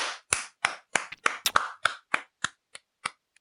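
A run of about a dozen sharp hand claps, fairly steady at first then spacing out and fading toward the end, with no voices over them.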